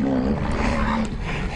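A rhinoceros on a rhino farm, at its daily feeding time at the troughs, lets out a loud, sustained, low-pitched bellow with a steady droning tone and rough, breathy edges, lasting about a second and a half with no talking.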